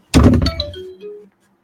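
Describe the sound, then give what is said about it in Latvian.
A second mobile phone, one kept only for clients, starts ringing: a dull thud, then a few short electronic tones stepping downward in pitch, fading out after about a second with no voices. “Bet tā ir man otrs telefons.”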